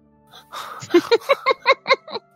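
Heavy breathing up close: a run of about seven quick, loud, voiced gasps in a steady rhythm, like someone panting hard, with no other talking.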